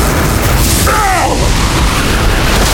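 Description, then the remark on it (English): A loud explosive energy blast, a powerful blast Solomon fires at Wotan: a steady, heavy low roar runs throughout, with a brief warbling, whistling tone sweeping through the middle. No one speaks. “Solomon took advantage of the distraction created by Jason to nail Wotan with a powerful blast of his own.”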